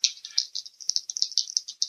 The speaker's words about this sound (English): Oh, no, I heard dice.